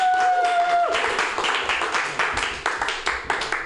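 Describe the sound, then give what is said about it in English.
An audience applauds steadily to welcome comedian Greg Gettle to the stage, dense overlapping claps at moderate loudness, with a brief tonal whistle-like sound fading out in the first second. “So, ladies and gentlemen, can we please give a warm round of applause for Mr.”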